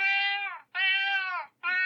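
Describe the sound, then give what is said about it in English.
A male cat named Kipper meows three times in quick succession, each call long and loud, separated by brief pauses, with the last meow cut short. “Right, okay, let me translate for you, Kipper.”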